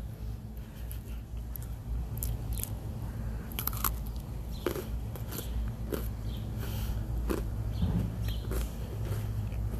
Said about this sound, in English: Today, I'm eating double stuffed Oreos.